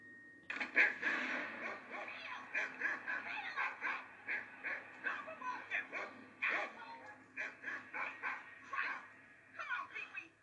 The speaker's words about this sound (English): Yeah, maybe you should teach your dog to behave so he isn't barking at me constantly.